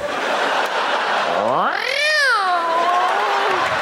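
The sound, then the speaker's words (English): A person imitates a cat's meow: one long, drawn-out vocal call that slides up in pitch, peaks, then falls slowly, fairly loud over steady background hiss. “Probably because I make a hot cat woman.”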